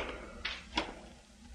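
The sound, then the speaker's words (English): A door opens and shuts as someone walks back into a building, two quick clunks a fraction of a second apart over a low, quiet room hum, with no voices. “I wait about 2 minutes, and then I walk back in.”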